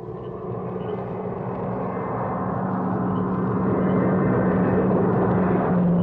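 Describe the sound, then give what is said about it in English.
A car's engine rumbles steadily and grows gradually louder as it approaches along a highway, coming from town, a broad, continuous roar with a low hum underneath and no voices. “There comes a car from town now.”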